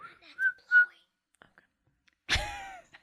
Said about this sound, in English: Do you suck into whistle or blow out? No, I blow out.